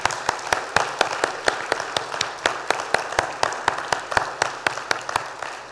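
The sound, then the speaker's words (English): A crowd applauds steadily for several seconds for students, teachers and university professors at U of T, a dense wash of clapping with sharper individual claps popping out at a quick, even rhythm throughout. No one speaks over it. “Can we give these folks a round of applause?”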